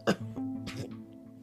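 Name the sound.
cough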